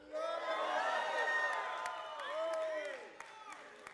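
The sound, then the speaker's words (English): A crowd at a sermon shouts and cheers together, giving a shout out to Jesus, many overlapping voices rising in a loud wave, with whoops and a few claps, then tapering off over a few seconds. “How many can give a shout out to Jesus?”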